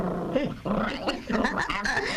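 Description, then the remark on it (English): A dog growls and grumbles, a continuous run of low, rising and falling snarls lasting about two seconds, with brief breaks between bursts. “doesn't like dog biscuits.”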